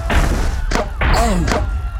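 Heavy, booming stomps of a giant rat hit the ground a few times in uneven succession, loud and low with a rumbling body, and a short tonal vocal sound rises briefly between the impacts.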